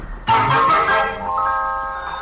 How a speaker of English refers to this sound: The phone.